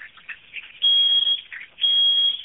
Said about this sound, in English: My alarm is going off. My smoke alarm.